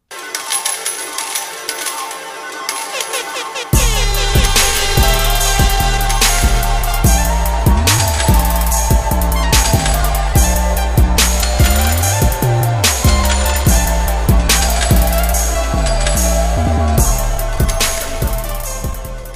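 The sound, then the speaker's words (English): Upbeat theme music opens with a few seconds of bright, thin, jangly sounds before heavy bass and a steady punchy beat kick in, staying loud and driving throughout, with no talking. “Drop the intro music.”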